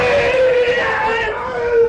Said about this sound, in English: Now the screaming, this is to increase power, to try to frighten your opponent and give added strength to your techniques. Does it work? Yes, very effectively.